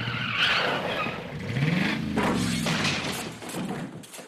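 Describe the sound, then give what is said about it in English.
A small plane comes in to land at a school, Cobham Intermediate: a steady engine drone with a whining tone that swoops up and down, over rough scraping and rumbling as it touches down on flat ground. No one speaks. “Oh, that was a really good landing.”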